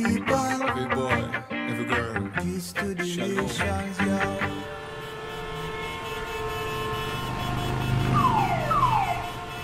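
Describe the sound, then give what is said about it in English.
Busy street traffic in Santo Domingo, Dominican Republic, with a barrage of overlapping car horns and honks, an alarm-like wail, engines rumbling steadily underneath, and descending electronic chirps sweeping down near the end. “I can even remember when traffic got this chaotic.”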